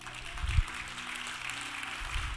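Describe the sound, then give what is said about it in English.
An audience applauds on invitation for the speaker and his wife of 50 years, a steady, dense wash of clapping that stays fairly soft throughout, with a few low thumps underneath and no one speaking. “In fact, my wife and I, whom we've been together for 50 years, you can clap now.”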